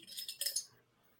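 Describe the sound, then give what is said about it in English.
Light, bright clinks and rattles of an empty cup being handled, a quick cluster of small hard taps lasting under a second, quiet, then fading to silence. “Oh, I do have a cup here. Hey, it's empty.”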